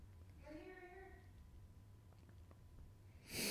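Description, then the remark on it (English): A person yawns once, a drawn-out voiced groan that swells and fades within about a second, over a low steady hum, followed later by a sudden rush of noise. “Oh, I'm yawning, dude. I'm yawning.”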